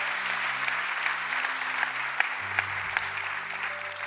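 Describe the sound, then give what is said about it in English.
A crowd at a sermon claps steadily for a group of people as they go back, a dense, even wash of many hands with a few sharper claps standing out, over a low steady hum. “Come on, let's give a big hand to these guys as they go back.”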